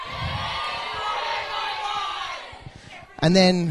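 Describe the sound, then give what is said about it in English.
A young crowd at a church youth gathering screams and cheers loudly together on request in a sustained, high-pitched roar for about three seconds, fading briefly before a single voice cuts in with loud talk at the end. “Can you scream really loud?”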